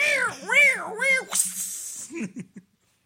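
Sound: cat meowing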